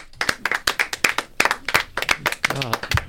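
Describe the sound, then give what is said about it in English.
A quick, steady run of about a dozen sharp hand claps, loud and crisp, with a voice briefly talking over the last moments. “I just got lightheaded from that. From what, clapping?”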